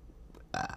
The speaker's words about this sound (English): If you burp, you can't burp in front of the mic.